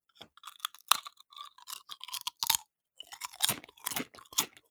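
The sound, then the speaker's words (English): Loud crunching of a Tesco-made flavoured snack close to the microphone, a rapid irregular series of crisp, brittle chewing bursts with short pauses between them and no talking. “I'm going to move the thing a little bit close to the microphone. So first one coming in now, what am I crunching?”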